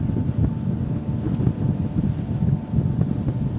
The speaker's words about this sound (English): Our boat approaches. The captain cuts the engine, and now it's quiet. And we behold the Eki Glacier.